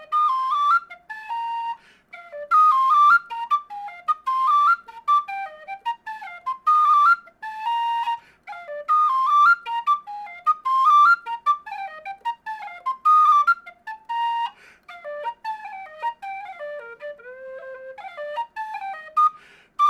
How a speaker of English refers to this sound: Alright, keeping on with the Royals, let's go with the Royal Hunt, also from Lytton, now on B-flat whistle.